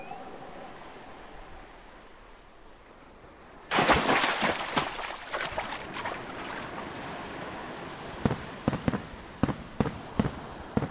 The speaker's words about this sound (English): Fireworks! Sparkly. There must be a party on the ship.